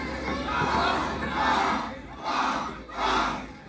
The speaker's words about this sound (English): Yeah, it's like a football chant. Yes.